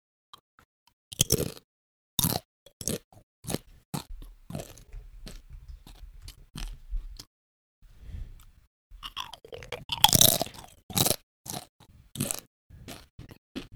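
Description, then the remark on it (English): Crisp crunching and chewing in an ASMR-style recording, with sharp bites repeating at an irregular pace and wet mouth sounds between them, with no talking. “It's a fetish for listening to people eat and do things with their mouth and sound.”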